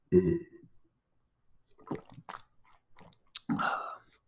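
Someone drinks water: a few separate sips and gulps with wet mouth sounds and short pauses between them, fairly quiet, and no talking.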